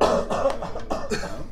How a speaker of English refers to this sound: You take our podcast and make it better. You remember to edit all of the coughs.